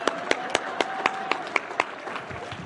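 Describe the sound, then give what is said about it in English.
A preacher giving a sermon claps about eight times in a steady, brisk rhythm, sharp and crisp, over a soft wash of background applause and room noise. “Let me clap too.”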